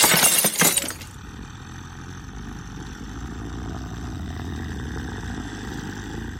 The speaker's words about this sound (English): The sound of glass smashing broke his stupor.